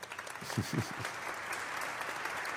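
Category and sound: crowd, hand claps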